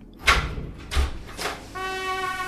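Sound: door opening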